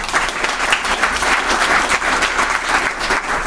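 A crowd applauds steadily, many hands clapping in a dense, continuous patter that stays fairly loud and even throughout, with no voices standing out.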